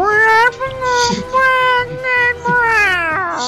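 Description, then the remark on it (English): A person's voice imitates a cat, producing a series of drawn-out, wavering meows with a high, whiny pitch, loud and continuous with brief dips between calls. “and in cattish, I'm going to say...”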